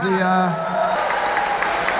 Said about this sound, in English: How about a round of applause also for Rob Hale?